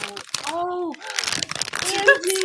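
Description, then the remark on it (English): A packet of fruit chews crinkles and rustles in quick, irregular bursts, while a voice makes drawn-out vocal sounds over the crackling plastic. “So a snack item, which you guys know is one of my favorite things. I do love a good snack. I got them.”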